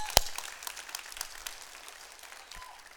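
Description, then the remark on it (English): An audience breaks into applause, many overlapping claps forming a dense patter that starts with one sharp clap and gradually fades over a few seconds, with no one speaking. “Come on, we're excited about that takeover. You want to clap?”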